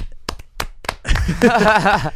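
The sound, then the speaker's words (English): A few scattered hand claps from people in a studio ring out in the first second as a guest is introduced, sharp and uneven, before a voice starts talking and carries on without them. “Every time I introduce, I expect kind of like everybody who's in the room to clap, but we usually don't get that.”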